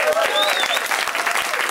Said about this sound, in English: So yay, clap for that!